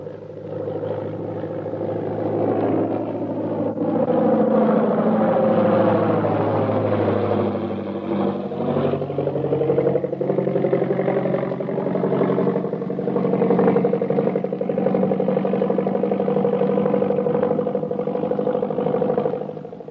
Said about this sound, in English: Here comes the plane. We'd better stand where we can get a full view of everybody getting off.